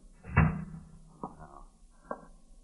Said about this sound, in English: Let me close the door.